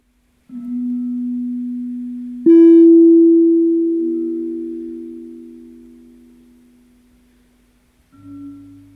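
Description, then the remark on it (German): Clear, sustained tones of selected ceramic tiles from the tile production of Merzig, played on a Ceramophon, ring out: a steady hum, then a sharp struck onset that blooms into a bright, resonant tone and slowly decays, followed by another brief low tone. No voices. “Die versteinerten Klänge ausgewählter Fliesen konservieren die Erinnerung an die Tradition der Fliesenproduktion in Merzig und hallen in den nächsten Jahren nach.”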